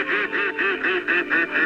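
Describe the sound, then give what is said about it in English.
A rapid run of about seven nasal duck quacks in steady rhythm, fairly loud, with no talking over them, from a group of 13 ducks in a swimming pool outside a studio window. “I fed one and then two and now I have 13 ducks.”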